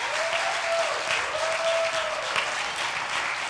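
A church audience claps steadily for the pastor in sustained applause, a dense, even wash of many hands with no talking and a faint high tone threading through at moments.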